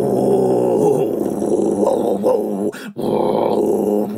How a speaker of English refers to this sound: Koalas are super cute, so you'd think they'd sound cute too, right? Yeah! Wrong. Baby koalas do make funny, cute, squeaking sounds, but adult male koalas make deep grunts and groans and will bellow loudly in order to scare away other males.